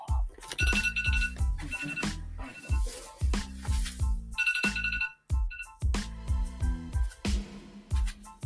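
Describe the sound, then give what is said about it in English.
A phone alarm ringtone plays loudly and continuously, a bright, rhythmic electronic melody with punchy repeating beats and chiming tones, and no one speaks over it. “I had my alarm set. I thought I turned it off”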